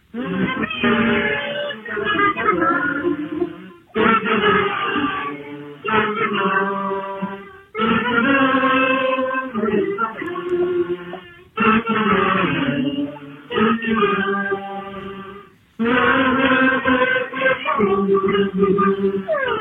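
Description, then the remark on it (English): A kazoo band plays for National Kazoo Day, a loud, buzzy, nasal tune in several short phrases separated by brief pauses, with multiple reedy voices moving together in pitch for about twenty seconds. “and we're here with our kazoo band for National... For National Kazoo Day.”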